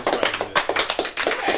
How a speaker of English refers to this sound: Oh, very nicely done. Give them a nice round of applause.